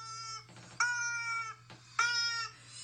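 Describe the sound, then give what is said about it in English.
A rubber chicken being drowned in a sink squeaks in a series of shrill, nasal, wailing honks, three strained bursts with short gaps, over a steady low hum. “Rubber chicken. A rubber chicken.”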